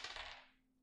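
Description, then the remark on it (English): A die rolled for a perception check clatters briefly across a hard tabletop, a quick burst of small rattling impacts that fades out within half a second, landing on a one. It's fairly quiet, with no voices. “No, I rolled a one.”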